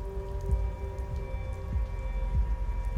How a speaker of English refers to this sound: The rain continues.